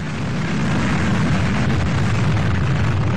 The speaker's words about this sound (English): Approaching the predetermined release point, the launch control officer turned on the fuel and ignited the engine.